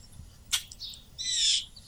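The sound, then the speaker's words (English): Chickadees calling in a little tree in the afternoon: a sharp high chip, a few softer notes, then a longer buzzy, harmonic call, all fairly quiet against a faint low background hum with no talking. “Yes, they're doing a good job over there this afternoon. Yeah, with the chickadees.”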